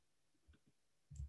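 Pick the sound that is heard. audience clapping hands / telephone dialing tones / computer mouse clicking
computer mouse clicking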